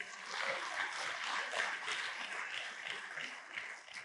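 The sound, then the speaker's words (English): A large crowd in Lusaka claps together in a dense, steady wash of applause that holds at a fairly even loudness throughout, with no voices standing out above it. “What we are doing when we applaud like that, we are saying, I've got that truth and I'm going with it.”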